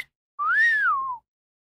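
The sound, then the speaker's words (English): A single clear whistle from a person in a whistling competition, rising then gliding slowly downward in pitch, lasting under a second, fairly loud with no talking. “it's a competition. Write who you think won on Twitter. Hashtag Whistle King.”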